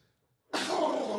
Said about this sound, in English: Take your vitamins, bro. We're good. It's just a small sneeze. Yeah, just a sneeze. Just a sneeze.